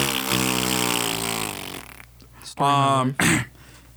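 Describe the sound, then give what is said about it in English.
A voice makes a long, buzzy mouth-fart noise, then two shorter, louder sputtering bursts after a brief pause, all fairly loud. “There's something spicy in that fart that leaves you blind for 3 rounds.”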